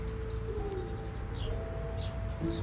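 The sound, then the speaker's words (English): Scattered bird chirps and tweets ring out in springtime over steady outdoor background rumble, with a few soft cooing tones underneath; no one speaks. “See, the birds are singing. Listen.”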